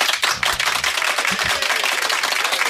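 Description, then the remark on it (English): A single person applauding themselves, clapping hands quickly and steadily, with a rapid run of sharp, bright claps that continues without a pause and with no talking. “I'm applauding myself.”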